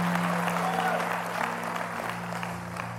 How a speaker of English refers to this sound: Clap your hands unto the Lord as you're seated, and you may be seated.